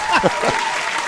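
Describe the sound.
A short burst of applause, a dense steady wash of clapping at fairly loud level, with people's voices talking briefly over the start of it.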